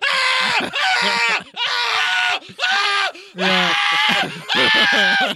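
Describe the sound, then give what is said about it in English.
A person screams loudly, six strained, drawn-out cries in a row, each separated by a brief pause, with a steady, almost rhythmic pattern. “or just scream.”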